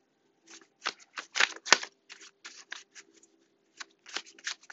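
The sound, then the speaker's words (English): Crisp riffling of tarot cards being shuffled for a reading, a rapid series of papery flicks and slaps in uneven bursts, with a faint steady hum underneath. “I am shuffling the tried and true Taramucha.”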